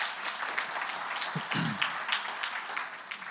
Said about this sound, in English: Give them one more big hand clap this morning.